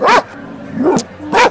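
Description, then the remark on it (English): A boxer dog barks sharply and loudly, two strong barks about a second apart with a softer, shorter bark in between. “the Boxer loves to bark at crows.”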